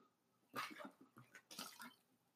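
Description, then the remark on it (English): A person drinks water: a run of wet gulps and slurping swallows in quick, uneven succession, fairly loud against a quiet background, with no talking. “Sorry, I had to take a little drink of water.”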